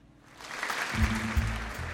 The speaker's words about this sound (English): Polite applause.